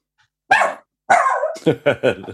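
A dog barks: two separate barks, the second drawn out almost into a howl, followed by three quick sharp barks in a row.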